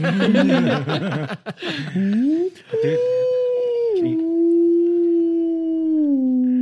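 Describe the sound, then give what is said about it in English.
After a burst of laughter, a voice imitates an owl's hoot with a long, drawn-out tone that rises, then holds and slowly slides lower, loud and steady. “I was going to try and do a crow cawing. A bird flies by. It's an owl.”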